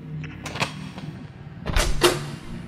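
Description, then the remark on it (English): A few sharp metallic clicks as a heavy metal key is worked in a door's keyhole, then a louder rattle and thump as the door swings open. No one speaks. “Holding it firmly, he walked to the door and sunk it into the keyhole.”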